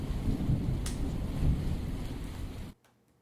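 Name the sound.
rain and thunder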